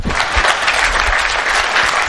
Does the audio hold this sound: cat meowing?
no